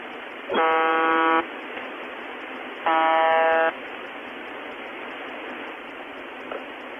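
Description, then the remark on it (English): A buzzing shortwave radio signal: two harsh, droning buzz tones, each just under a second, separated by a pause, over a steady bed of hissing radio static. No one speaks. “But occasionally the signal stops, and of course people have been recording this signal for years waiting for it to do something interesting. On August 2010, the buzzing stopped, and the following message was broadcast in Russian.”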